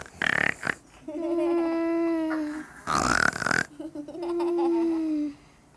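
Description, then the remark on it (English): A voice imitates a grandmother's snoring twice: a harsh, noisy snort followed by a long, droning, low-pitched hum, repeated in a slow, loud rhythm with no other talk. “This is what she does when she snores.”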